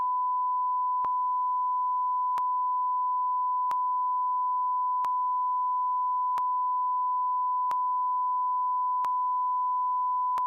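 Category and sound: sound effect, censor beep tone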